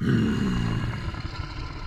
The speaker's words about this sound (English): And her faculty of speech, it was replaced by a terrifying growl.